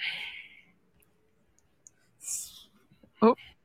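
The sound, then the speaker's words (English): Breathy, hissing puffs of air blown straight into a microphone, two soft exhalations separated by silence, then a sharper pop and rustle near the end. No words are spoken. “All right, we hear some breathing.”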